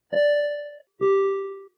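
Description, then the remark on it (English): A personal-record (PR) bell at a 5K race rings out twice, two clear, sustained metallic tones, the second slightly lower in pitch than the first, each ringing loudly for under a second with no voices. “and that's good for a PR bell.”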